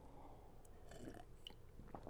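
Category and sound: food or drink, sipping coffee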